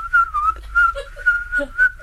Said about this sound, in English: What is that? That's me whistling. Oh, I thought it was an insect.